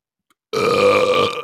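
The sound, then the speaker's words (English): A single loud, drawn-out burp erupts after a brief silence, rumbling with a deep, resonant tone for nearly a second, unaccompanied by any talking. “Yeah, it makes me burp.”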